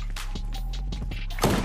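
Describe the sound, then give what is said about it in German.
A foot bumps and scrapes against a chair, a series of soft, dull knocks ending in one louder thud, over a steady low background hum. “Das war mein Fuß, der am Stuhl so rum.”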